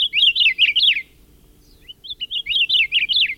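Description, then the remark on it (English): A Hawaiian forest bird calls in two bright, warbling bursts of rapid rising-and-falling chirps, separated by a brief near-quiet pause, clear over a faint low background hum. “Or perhaps the seeds hitched a ride on the ancestors of this Akeapola owl we're hearing, caught in a storm and blown to the Hawaiian Islands.”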